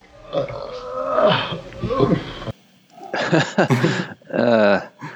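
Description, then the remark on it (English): A man enters a room and belches: a long, loud, gravelly belch that rumbles for a couple of seconds, then a pause and several short voiced utterances. “… actually enters the room and belches”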